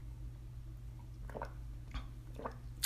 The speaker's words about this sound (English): You're going to hear a lot of ums and drinking water because my mouth is dry as fuck right now.